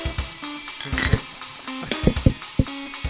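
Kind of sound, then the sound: household object, beer glasses clinking together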